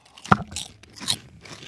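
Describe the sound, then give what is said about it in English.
Crisp crunching of a pizza-flavored snack being bitten and chewed, a sharp first crack followed by a few quieter crunchy chews, with no talking. “Crunch is good.”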